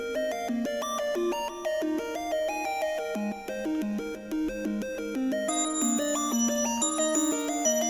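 A bright synth bell patch plays a quick attempt at a pop song's bouncy melodic intro, stacked chiming notes in a steady rhythm with sparkling overtones, no voices, at an even moderate loudness throughout.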